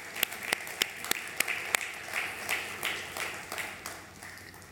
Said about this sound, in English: Let's applaud them one more time.